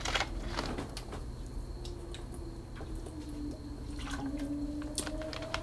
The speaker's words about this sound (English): I think the sequels, excuse me, I'm going to take another sip.